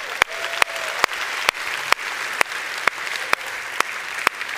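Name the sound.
audience applause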